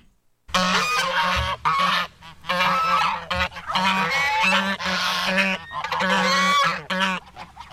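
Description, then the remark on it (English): A flock of geese honking loudly and nearly nonstop, harsh overlapping calls tumbling over one another in busy bursts with only brief pauses, and no voices. “If you said geese, you got it right.”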